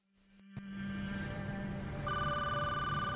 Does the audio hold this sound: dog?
no